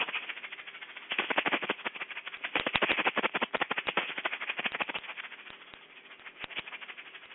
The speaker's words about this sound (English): Sound of the shaker, through the salted water, through our blessing and cleansing and visualization, this place is made whole and holy.